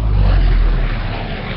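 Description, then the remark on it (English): A loud, steady rotor-driven drone from four-bladed aircraft buzzing around overhead at a warbird event flight line in the Raleigh area, deep rumbling and buzzing, with no voices. “there were some strange four-bladed things that were beating the hell out of the air and just buzzing around here”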